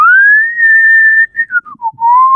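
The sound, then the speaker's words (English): A person whistles a clear, fairly loud tune: one long sustained note, then a few short falling notes, ending on a held lower tone. “I like the, do you want to whistle something right now?”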